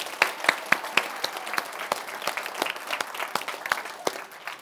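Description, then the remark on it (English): A crowd claps steadily for children who told the Christmas story, a dense patter of many hands with sharper individual claps popping out, holding at a fairly even level for several seconds before easing slightly toward the end. No one speaks. “Let's give another round of applause to all of our children.”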